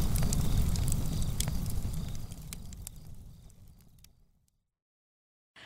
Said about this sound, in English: Campfire.